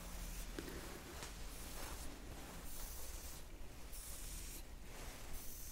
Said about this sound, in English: just comb your hair a little bit to side parts that we need.